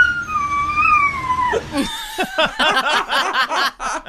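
A puppy lets out a long, wavering whine that slides downward, then breaks into a quick run of high, yappy little yelps, fairly loud with no one talking.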